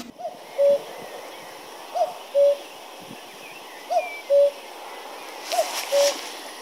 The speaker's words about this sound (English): Tweet of the Week is cuckoo. Fingers crossed that we hear a cuckoo this year.